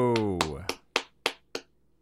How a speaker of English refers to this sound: Thank you. My first applause and standing ovation.